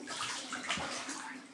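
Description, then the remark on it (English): Water sloshes and swirls in a bathtub as a man reclines in the tub until his body is submerged except for his head and knees, a steady watery rush with soft splashing and no talking. “All right, I'm reclining in the tub now.”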